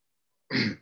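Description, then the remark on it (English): A woman, a scribe, clears her throat once, short and fairly loud, a rough gravelly burst lasting under half a second after a moment of silence. “And you see like another scribe not too far clear her throat and see.”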